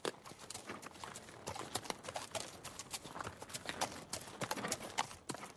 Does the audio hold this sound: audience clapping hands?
no